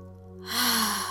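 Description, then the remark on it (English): A single deep, airy breath in through the nose swells in about halfway through and carries on to the end, fairly loud, over a low, steady humming tone. “So breathing in through the nose, releasing through the mouth.”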